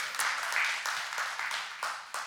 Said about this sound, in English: I'm going to have to teach y'all how to clap today. Y'all are still on the turkey tryptophan, I think.